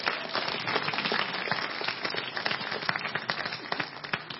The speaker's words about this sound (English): Everybody kind of clap